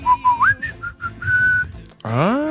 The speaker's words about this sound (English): I whistle it every day. No one ever catches me doing it.